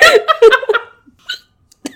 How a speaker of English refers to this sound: You know when the worst time to get hiccups is? Now? You're filming a fucking podcast.